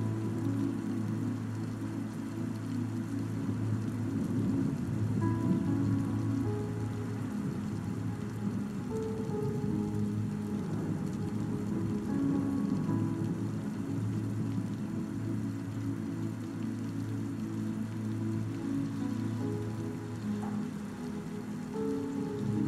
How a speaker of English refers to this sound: Focus on the storm, beloved.